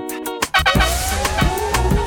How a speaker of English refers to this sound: I hope nobody was speeding on the way to the Poconos, because you're going to hear the cop car go something like this.